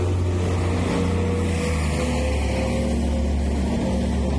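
A bus drives past outdoors, blowing up dust. Its engine rumbles loudly in a deep, steady droning growl with a low hum as it rolls past at low speed. No one speaks.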